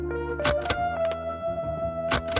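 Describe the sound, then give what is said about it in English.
A hole punch pressed several times, each press a sharp mechanical clack, coming in quick pairs with a pause between, over a faint steady background hum. “Mind if I use your hole punch?”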